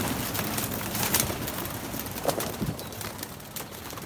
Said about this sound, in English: He keeps pigeons on a rather scruffy coop. He allowed me to join him as we went up onto the roof, and he let them out for their twice daily flight. This was in the morning.